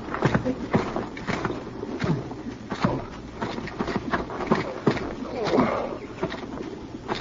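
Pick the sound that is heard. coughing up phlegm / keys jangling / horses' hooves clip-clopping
horses' hooves clip-clopping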